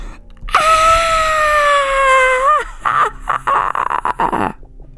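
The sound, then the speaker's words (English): A large crowd screams loudly: a long, piercing wail holds for about two seconds, then breaks into choppy, frantic bursts of shrieking and yelling. “What the cast of a large crowd screams, and it sounds like they're screaming so loud that they're laughing.”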